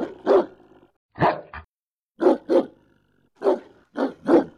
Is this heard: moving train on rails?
no